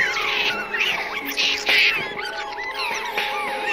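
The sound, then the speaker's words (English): A frantic chorus of shrill, squeaky squealing from freshly caught Cornish pixies in a cage, many high chittering voices overlapping continuously, with sharper bursts of chatter rising now and then. “Freshly caught Cornish pixies.”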